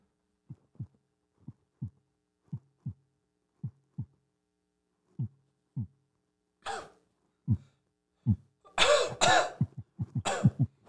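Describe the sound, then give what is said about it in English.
A slow human heartbeat of 48 beats a minute: soft, low lub-dub thumps in steady pairs. Later, louder bursts that sound like coughing or throat clearing break in between the beats. “A slow heartbeat is a sign of a healthy guy.”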